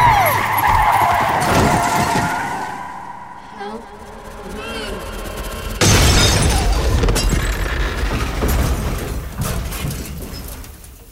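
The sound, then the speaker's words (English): A car swerves just before the Kara exit as a woman leaps out in front of it, with a loud screech of skidding tires, followed by a sharp crash-like burst and rumbling, intense, with a brief shout over the noise. “It all happened so quickly. We swerved.”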